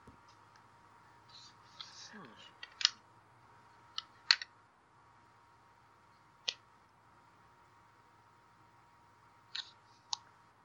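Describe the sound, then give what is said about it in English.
Scattered, sharp clicks of keys being tapped on a woman's small computer keyboard, a few isolated presses spaced seconds apart over a steady low background hum. “She starts typing something on her little computer.”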